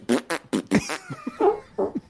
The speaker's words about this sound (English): For the comedy one, he just had, he had the biggest fart soundboard ever.